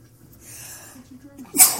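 A single sharp sneeze bursts out after a brief quiet intake of breath, loud and sudden with a hissing, explosive release near the end.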